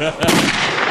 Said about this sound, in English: Like, the gun that is shot sounds like it's shot in the Grand Canyon. Yeah. Like, this is a big house, man. Someone who shoots themselves is not going to sound like that.